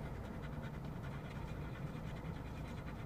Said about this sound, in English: In the background, you hear the breathing of the two dogs who've just been running in the grass at the park before dinner.